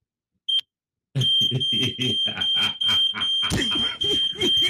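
signal or alarm, smoke detector alarm beeping

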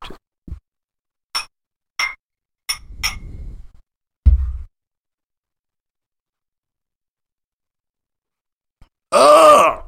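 household object, drinks clinking together

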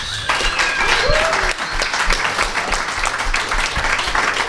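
crowd, small group clapping

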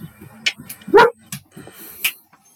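animal, dog barking

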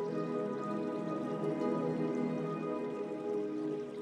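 nature, rain pouring outside

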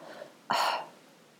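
human body sound, yawning

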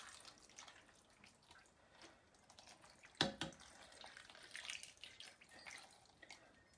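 food or drink, water poured

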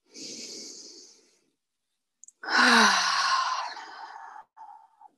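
human body sound, deep audible breath

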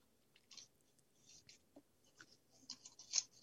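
household object, paper rustling

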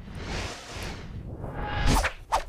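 sound effect, whoosh transition sound effect

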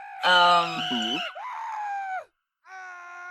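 crowd, people screaming

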